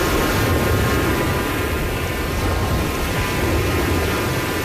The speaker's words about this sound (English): Nice little beach. Oh. Ambiance. I thought that was like a thunderstorm. No. Just beach. Little waves crashing into the shore. Put yourself in Ocean City right now if you want to.